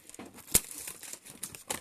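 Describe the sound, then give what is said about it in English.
Scissors cut through cardboard packaging sealed with tape: crinkly scraping and tearing with a sharp snip midway and another burst near the end, fairly quiet, no voices. “This is well sealed up with tape. I'm going to need a pair of scissors for this one.”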